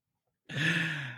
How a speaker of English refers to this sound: I've got a yawn, and it came to us from …, who sent it up as his vote for the yawn of the month.